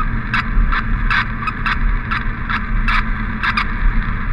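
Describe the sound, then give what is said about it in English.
Radio receiver interference static, crackling in short irregular bursts about every half second over a steady, loud, low engine-like hum, with no voices, heard on a tracking receiver in a truck on a suburban road while listening for the signal of a dropped GPS collar. “That's just interference, what you're hearing.”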